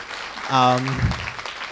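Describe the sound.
An audience breaks into applause, a crackling wash of claps that stays fairly steady, with a short voiced call rising just before the clapping takes hold.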